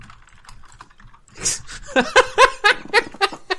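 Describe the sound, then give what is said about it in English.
Scattered, quick clicks of typing on a computer keyboard, followed by a burst of rhythmic laughter that rises louder over the clacking. “He's just going to have keyboard rolled on this.”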